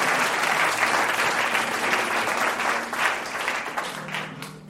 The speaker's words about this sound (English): When you love one another. Don't be afraid to clap for it. It's fundamental. You can clap for it.